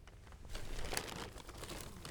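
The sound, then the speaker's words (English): Plastic packaging, being sorted for recycling, crinkles and crackles in a steady, busy stream of sharp rustles, with a brief louder crunch near the middle and no voices. “More plastic?”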